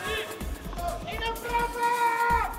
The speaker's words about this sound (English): Crowd just not settling here. They want more tennis for sure as Nadal gets ready to serve now.